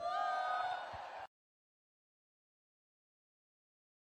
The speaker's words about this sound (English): Yeah, Texas A&M fans are weirdos. They like the few sad yells, the woos in the background, not very loud, as a part of this midnight yell thing.